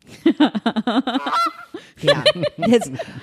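A goose honks in a quick, rhythmic string of loud, nasal calls, pauses briefly, then lets out another burst of harsh, prominent honks.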